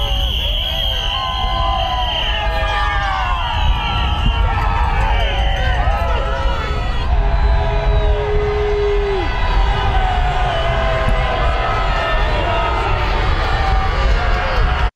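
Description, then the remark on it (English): A large crowd of President Trump's critics cheers and shouts as he is driven home from golfing in Virginia after losing, many voices overlapping in a loud, steady roar, with a brief held tone rising above the din partway through. “He was golfing in Virginia, driven home past his critics cheering.”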